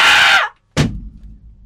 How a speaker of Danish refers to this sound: Udenfor kan man høre valravnen skrige. Lise skriger også